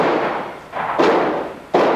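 Gunshots ring out, two or three sharp, loud cracks spaced unevenly about a second apart, each trailing into a brief echoing decay, with no voices present.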